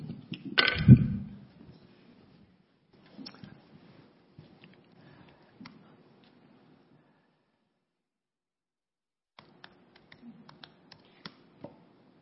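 A strong thump opens, then bursts of soft, irregular key clicks as a password is typed on a keyboard come in two stretches separated by a quiet gap, with a low steady hum beneath. No one speaks.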